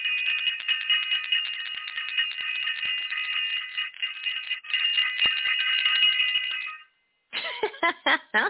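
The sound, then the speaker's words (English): A bright, high bell rings continuously and rapidly for about seven seconds, fairly loud, then stops briefly before a few more rattling rings start up again. “I want to ring the bell for self-invested and for all of our self-invested family out there.”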